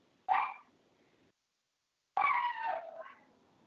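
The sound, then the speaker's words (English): A dog barks twice: a short, sharp bark, then after a pause a longer, drawn-out bark that trails off. It's moderately quiet, with no talking around it. “Sorry about that. It's my dog.”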